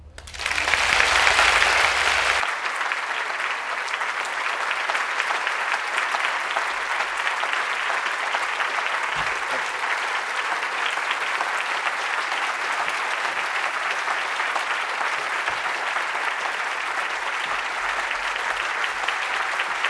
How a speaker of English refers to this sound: Your applause says it all. That was the book festival at its very best.